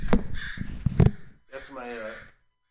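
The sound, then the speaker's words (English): A notification sound of harsh, raspy crow caws rings out fairly loud: a quick cluster of clipped calls, a short pause, then one longer drawn-out caw that trails off. “It's just a murder of crows that just kind of hang out by my house.”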